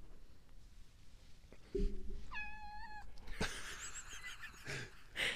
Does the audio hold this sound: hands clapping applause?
no